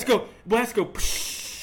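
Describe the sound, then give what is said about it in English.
A short voiced sound from a person, then a sharp pop and a steady fizzing hiss as a can of Bush Light beer is cracked open. The hiss continues to the end. “It kind of does that on the when you open the bottle, too. It's more like a psst.”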